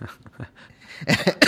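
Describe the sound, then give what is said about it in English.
A coughing fit: faint throaty sounds first, then a loud, harsh run of rapid coughs and one more sharp cough right after. “Cough it out, man.”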